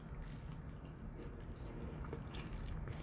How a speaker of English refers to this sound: So if you don't want to hear me crunching, I apologize. But these fries are a little bit crispy. Not burnt crispy, but you know, crunchy crispy. That good crunchy, you know?